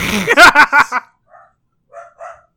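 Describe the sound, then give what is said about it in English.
A dog lets out a rapid run of about five loud barks, then after a short pause gives a few softer, fainter barks. “The dog is barking now.”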